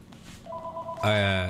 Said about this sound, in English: I unplugged that fucking thing. I swear to God, sure I did. You did. Don't answer it. I have to. I'm in your house. Ringing. I'm calling you from your house.